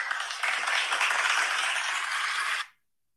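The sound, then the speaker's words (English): A dense wash of applause, steady and hissy enough to resemble falling rain, runs for about two and a half seconds before cutting off abruptly into silence. “Does that just sound like rain? It's supposed to be applause.”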